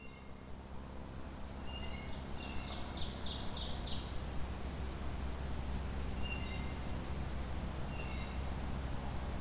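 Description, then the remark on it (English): A breeding bird sings a quick rising series of bright, high notes, followed later by a few short chirps, over a steady outdoor hiss with no one speaking, recorded on a hot summer day in July 2020 at a natural area near Cambridge, Ontario, Canada. “It's July 12th, 2020, and I'm recording some breeding birds at the Maester Tract near Cambridge, Ontario.”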